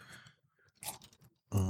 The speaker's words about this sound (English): I'm sorry, I was drinking. Okay. I noticed. Whatever, man. Slurping it all up.